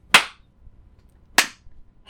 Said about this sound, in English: Oh, I got a slow clap.